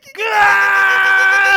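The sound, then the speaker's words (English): A child lets out one loud, sustained, high-pitched scream, starting abruptly and holding steady at full volume for over a second with no other sounds around it. “I usually scream very loud and I'm like, don't do that ever again.”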